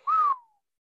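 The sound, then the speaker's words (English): A single short, clear whistle from a person, holding a steady tone briefly before gliding down in pitch and fading out. Fairly loud, with no talking. “I don't know why I'm whistling, because I agree with you on San Francisco getting it.”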